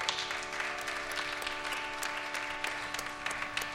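A crowd at a live music show applauds steadily, with many overlapping claps forming a dense, sustained wash of sound, joined by a few scattered whistles or cheers, over a faint steady hum.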